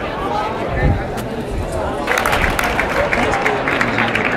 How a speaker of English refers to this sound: So the torero bullfighter on horseback just lanced the bull with the spear, with the stick with a spike on, which promptly fell out of the bull's neck. And that's why everyone was applauding.